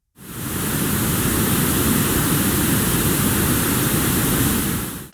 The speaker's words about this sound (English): There are actually two other types of color noise, and those are pink and brown noise. And pink noise has less high frequency tones than does white noise. So here's what that sounds like.